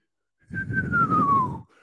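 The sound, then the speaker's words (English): A person whistles one sustained note that glides slowly downward in pitch for about a second, over a breathy, rumbling noise, then stops abruptly. “Here comes the Whistler.”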